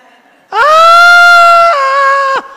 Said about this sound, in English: You know how you go to those theme parks and fairs and stuff, and when they're on the roller coaster and you hear the screams?